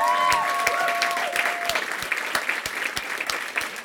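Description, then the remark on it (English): A crowd applauds steadily, dense clapping filling the space with a few sharper individual claps standing out, while a brief high whistle-like tone rings over the start. “I mean, I know we gotta go, but can we just clap it up for the Black Boy Joy that's going on in the back of me right now?”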